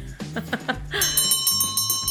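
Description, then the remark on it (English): A loud electric opening bell rings rapidly and continuously for about a second, its rattling metallic clang steady, after a brief run of soft rhythmic thumps. “And there's the opening bell.”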